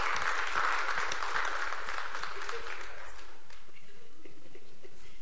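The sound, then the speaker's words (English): A crowd applauds with dense, overlapping clapping that starts loud and steady, then gradually thins and fades out over about five seconds. “And those that get the most claps are the most popular.”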